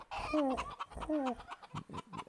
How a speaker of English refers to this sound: So I don't have a pigeon sound, but we'll just use the chicken sound.